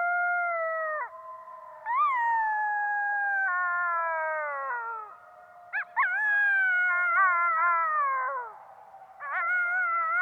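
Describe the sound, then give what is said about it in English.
Several coyotes howl together in Yellowstone in a long, overlapping chorus, their wavering high notes rising and sliding down, with a few sharp yipping breaks, heard clearly with no talking. “Matt, your recording of the coyotes in Yellowstone also, like the loons, like gave me the chills”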